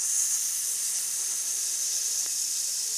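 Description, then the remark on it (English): A long, steady exhale pushed out as a hiss in a vocal breathing exercise, a bright, airy sound held at an even level for about three seconds without a break or any talking. “My mom was also a vocal coach, and she used to teach an exercise where you just inhale and you hold the breath, and then you exhale on a hiss.”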